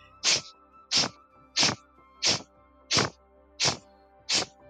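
Seven strong, sharp sniffs through the nostrils, done as a breathing exercise while pulling the belly in, each a short hissy burst, evenly spaced in a steady rhythm of about one every two-thirds of a second, with no talking.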